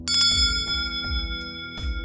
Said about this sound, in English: Your phone. The chief is calling.